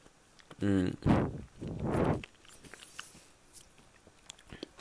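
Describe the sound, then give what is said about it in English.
Crunching as someone bites and chews the crunchy part of a peanut: two loud crunchy bursts after a brief squeaky tonal sound of their teeth squeaking, then quieter mouth noises and faint clicks. “I can hear my teeth squeak when I eat the crunchy part of the peanut.”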